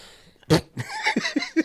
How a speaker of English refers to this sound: Bless you again.